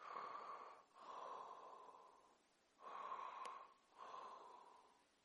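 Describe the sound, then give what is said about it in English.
A voice imitates a person's heavy, snorting breathing: four loud, raspy breaths in a steady in-and-out rhythm with short pauses between them and no other sounds. “And he was breathing like this.”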